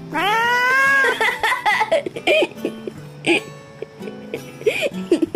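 A cat lets out a long, loud, drawn-out meow, followed by a string of shorter, choppier meows and chirps with brief pauses between them, no talking.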